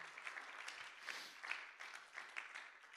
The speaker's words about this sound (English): Come on and clap your hands and give God some praise today.